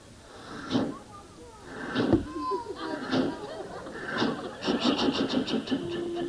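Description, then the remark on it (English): An old-time steam passenger train starts up with irregular mechanical clunks that settle into a quick rhythmic clatter, ending on a steady low hum, with faint voices in the background. “So here we go, all aboard the passenger train, I believe it is, instead of the freight train.”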